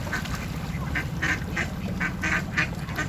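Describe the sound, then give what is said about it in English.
Several ducks quack in quick, excited bursts, about eight or nine short calls, as people at the riverside feed them near a jetty under John's Bridge, over a steady low rumble of water or a boat engine, with no one speaking. “We're coming back to our little jetty here just under John's Bridge, and the ducks are being fed by some good people on the side, and they're pretty excited.”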